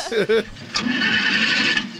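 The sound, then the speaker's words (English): A car engine cranks with a steady, grinding whir for over a second but never catches, following a brief voice at the start. “Damn it, it won't start.”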